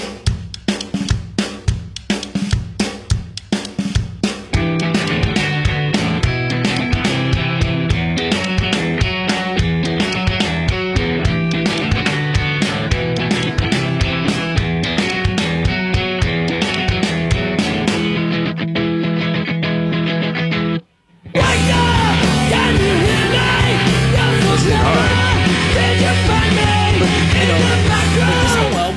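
A loud rock song, the first track of a 2002 rock album, with heavy distorted guitars and pounding drums, opening on sharp drum hits before settling into a dense, driving wall of sound that cuts out briefly and then crashes back in.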